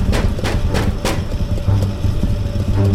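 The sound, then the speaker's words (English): Four sharp knocks rap on a door in a quick, even rhythm, followed by a steady low rumble like an idling engine that continues to the end. “But that knock, it sounded so human. What would knock like that?”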